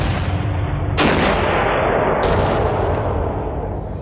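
Heavy cannon blasts go off one after another, each loud boom rolling into a dense, sustained rumble with no pause between shots and no voices.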